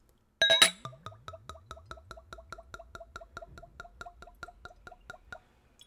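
A liqueur bottle with a small plastic pour spout clinks against a glass, then viscous peppermint liqueur pours out in a steady run of rapid, hollow glugs, each bubbly gurgle evenly spaced and moderately loud until the stream stops. No one speaks.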